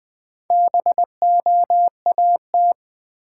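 Morse code at about 20 words per minute: a single steady mid-pitched tone keyed into quick dots and longer dashes, with brief gaps between letters and no voices.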